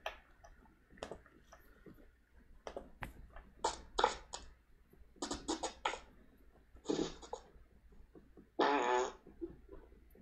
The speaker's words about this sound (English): Is that a voicemail? Yeah. Yeah. That was a fart. Oh, I thought you were playing something that you made the other day with your beatbox shit. No. No, that's a fart. I'm like, wow, that's like, a you fart. Really come a long way.